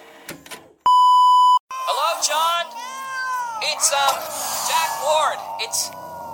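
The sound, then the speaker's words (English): A steady electronic beep, then a continuous stretch of high-pitched, warbling squeals and chirps, like sped-up garbled voices, as an answering machine tape is rewound to check Mr. Bell's messages in the penthouse suite of the Mutual Audio Network building. “Let me rewind the answering machine here.”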